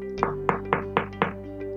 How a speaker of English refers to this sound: Lost in thoughts, as I took my pen again, I heard a soft knock at the door.